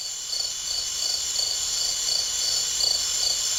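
A steady, dense chorus of crickets chirping at night, a continuous high trilling with a faint pulsing rhythm, moderately loud and constant throughout with no voices or other sounds.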